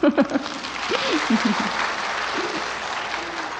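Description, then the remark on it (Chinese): An audience at a Buddhist talk breaks into steady, sustained applause to show agreement, a dense wash of many hands clapping that fills the whole stretch, with a voice briefly speaking over it near the start. “对，哎，如果对就鼓掌一下。”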